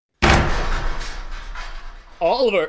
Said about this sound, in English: Sorry I had to bust the door